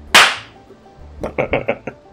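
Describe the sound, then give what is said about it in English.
A woman reaches through a window and slaps a man across the face: a single sharp, loud slap cracks out near the start and fades quickly, followed about a second later by a few short, muffled vocal sounds. “She reaches through the window, like, seductively grabs him by the collar and pulls him in real close, and then she slaps him.”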